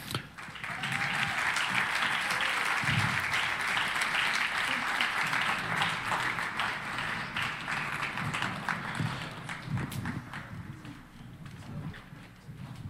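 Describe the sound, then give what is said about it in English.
Sustained applause from an audience welcoming a panel of pastors, a dense wash of many hands clapping that holds steady at a loud level for over ten seconds, with no voices. “And so would you help me welcome our panelists, our pastors here?”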